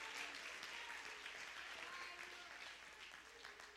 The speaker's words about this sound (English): Clap your hands if you believe what I'm preaching to you right now.